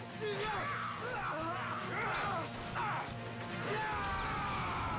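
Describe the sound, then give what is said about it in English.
A loud, sustained giant explosion in a film, with crashing and whooshing effects, layered with swooping tonal sounds and a dense rumbling roar filling all five seconds. “There's no need for an explosion there.”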